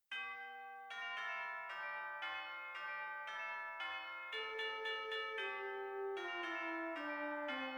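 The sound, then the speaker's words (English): An elaborate chiming doorbell plays a long, ringing melody of many bell notes in steady succession, each tone overlapping the last, clear and fairly loud with no voices. “And see to it we get a normal doorbell?”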